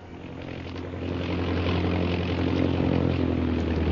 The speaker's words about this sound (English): Shanghai Lil's big black seaplane circles the plantation and finally comes to rest on the ebony surface of the river.